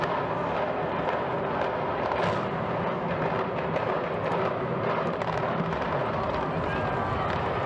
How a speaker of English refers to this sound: But you see that, and it's just in a moment the building is destroyed.